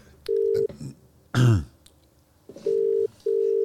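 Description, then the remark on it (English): A telephone ringback tone purrs through a handset in steady, mid-pitched bursts, including a double ring near the end, with a short throaty cough or grunt in between and faint background movement. “I can hear something ringing.”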